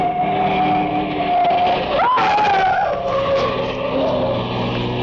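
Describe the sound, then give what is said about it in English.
A car engine roars loud at night, its whining pitch rising sharply midway as it starts up down the street and accelerates past with a brief squeal of tires. No one speaks. “It was a short trip because a car started up down the street, and the old man couldn't have made it with a pocket full of aces.”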